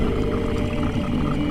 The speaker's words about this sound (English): and this dragon lets out this curdling roar.